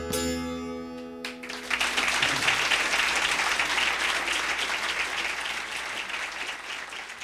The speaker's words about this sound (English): When I finished, I remember what seemed to me to be a very long silence, like the audience was unsure about how to react. Then the applause began and built, and it got pretty loud.